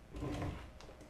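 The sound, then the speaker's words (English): A quiet, brief mechanical rattle and hiss from an office chair's height adjustment lever, the chair failing to go down, followed by a faint click, with no voices. “And my chair didn't go down.”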